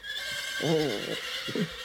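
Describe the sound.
A person imitates a horse whinny for a horse character named Snuffles, with a wavering, rising-and-falling neigh, followed by a shorter second burst, all over a steady background hiss.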